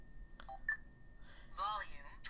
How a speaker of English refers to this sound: And we're on edit right now, and we hear the sound that tells us we're in a menu.